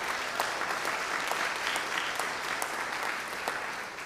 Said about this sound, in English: Do know that applause was for her for staying with me for 25 years.